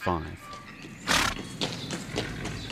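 A horse, ridden along a track near the bank of the Tangahoe River in Taranaki in June 1865, gives a short whinny at the start, followed by a few uneven hoof clops on hard ground, moderately loud.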